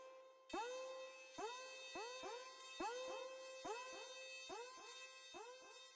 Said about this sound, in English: Here's the synth and the car horn at the same time, creating this like constant kind of like almost alarm buzzing sound that actually in the context of the track sounds really nice.